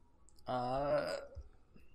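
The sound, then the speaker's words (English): A single loud, drawn-out burp made right into the microphone, lasting under a second with a deep, throaty, voiced rumble, followed by quiet background. “Just burp really loud into the microphone.”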